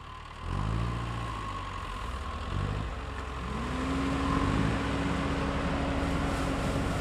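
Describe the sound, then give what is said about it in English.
A cherry tree shaker machine runs in Leelanau County, Michigan, with a steady, heavy engine rumble; partway through, a droning mechanical whine climbs in pitch and then holds steady to the end. “the sound of cherry shakers like this one were a common feature of the landscape in Leelanau County, Michigan.”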